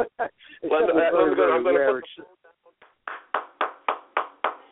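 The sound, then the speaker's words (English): A warbling, tonal call gives way to a short run of slow, evenly spaced claps, about seven in a steady rhythm, like a lone person applauding. “There's my applause.”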